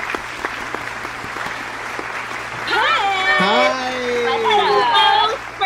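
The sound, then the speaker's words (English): An audience claps in a dense, steady patter to welcome the improv troupe Please Clap, and after a few seconds loud whoops and cheering voices rise over the continuing applause. “So please welcome. Please clap.”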